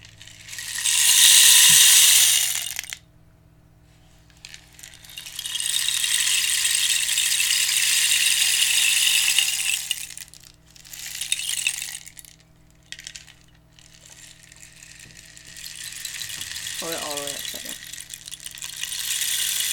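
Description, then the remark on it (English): A rain stick tipped several times, each turn releasing a bright, hissing cascade of rattling pellets; the first pour is loudest, later ones run longer and softer, with brief pauses between. “Meanwhile, we'll do the rain stick.”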